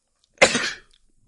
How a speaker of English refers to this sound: Bless you. Thank you.